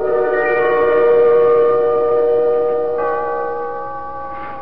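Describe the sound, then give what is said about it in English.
A faulty clock's chime rings out on its own for the second time this morning, a loud, sustained stack of bell-like tones that hum steadily, shifting slightly partway through before ending with a brief knock. “I want to fool around with the works and see if I can get it going and figure out what goes with the chime.”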